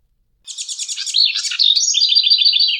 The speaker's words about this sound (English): House wren.